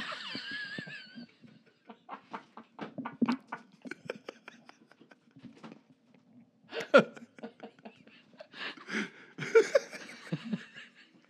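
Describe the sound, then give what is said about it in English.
A run of sharp, abrupt hiccups, fairly loud, popping out at irregular intervals and mixed with bursts of breathy laughter. “I have the hiccups.”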